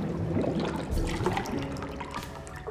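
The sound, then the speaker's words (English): A steady liquid pour, milk glugging and splashing into a glass with a rising, bubbly trickle that carries on for a few seconds, no voices. “Milk being poured into a glass is close behind.”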